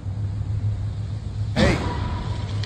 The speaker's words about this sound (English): Let's run the little clip of the car crash itself because there are cameras nearby and stuff. And then there is a car crash right over there and you can hear it.